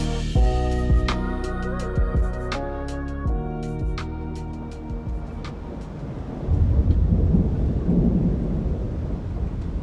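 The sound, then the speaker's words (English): A thunderstorm, with steady rain hissing and low thunder rumbling, swelling louder near the end. Sustained musical tones play over the storm at first, then fade away. “Storms are a metaphor for life. They roll through, sometimes blow through.”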